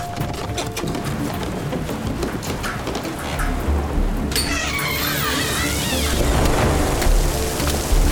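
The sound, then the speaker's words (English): Heavy rain pours down in a steady, dense roar with a low rumbling underneath, growing louder partway through as thin whistling tones rise over the downpour. “Oh, man, is it raining.”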